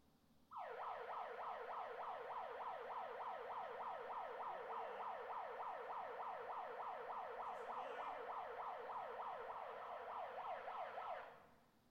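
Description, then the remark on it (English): A loud emergency alarm siren, sounded by a person, wails continuously for about eleven seconds, its pitch sweeping rapidly up and down in a steady, fast repeating yelp with no voices over it. “This is what … does. Is he sounds the alarm.”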